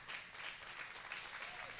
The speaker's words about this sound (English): Would you guys just stand and let us recognize? Would you guys just give him a round of applause?